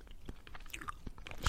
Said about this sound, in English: Are you going to stop chewing gum?